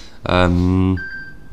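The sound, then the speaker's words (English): A loud voice sounds briefly, then a thin, steady electronic beep from a mobile phone notification rings out faintly for about half a second. “I put my phone on silent.”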